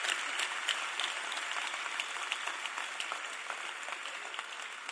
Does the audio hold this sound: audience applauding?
yes